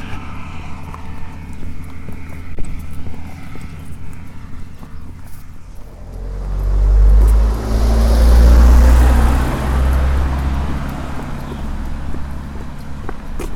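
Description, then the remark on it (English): Steady footsteps tread through fields on the Trefusis estate, heading back down to Flushing, rhythmic and fairly soft, while a deep gusty rumble swells loudly midway and then eases off. No one speaks. “I'm walking through fields back down to Flushing.”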